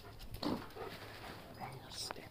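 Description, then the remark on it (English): A dog pants and whimpers in short breathy bursts, with a thin, high whine rising near the end, all fairly quiet against a low background murmur. “Fucking stinky, dog.”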